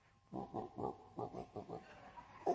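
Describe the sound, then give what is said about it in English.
A pig sitting in the corner of an unlit, roofed shelter in the afternoon grunts in a quick, steady series of about eight short, low snorts, moderately loud, with no voices. “And I remember sitting, looking in the corner, and there's this pig sitting in the corner.”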